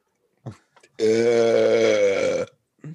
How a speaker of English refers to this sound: Burp off.